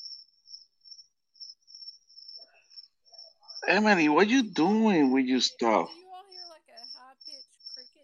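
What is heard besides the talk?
crickets chirping outdoors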